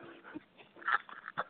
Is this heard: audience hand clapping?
no